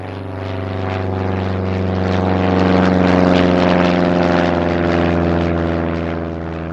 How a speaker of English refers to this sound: I was enjoying the music until an airplane flew overhead. causing all the animals to become silent.